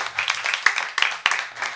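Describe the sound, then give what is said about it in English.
A crowd applauds with a dense, steady patter of many hands clapping, a few sharper claps standing out in the wash, sustained at moderate loudness with no talking over it. “A round of applause”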